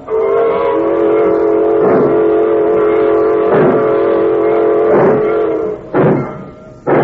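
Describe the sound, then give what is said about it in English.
A freight train's whistle blows in a long, steady, harmonic blast lasting several seconds as the train pulls out, with rhythmic chuffing bursts beneath it and a few sharp clanks near the end. “She's pulling out.”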